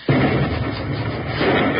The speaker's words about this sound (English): Well, I'll feel better when I hear that explosion. You'll hear it.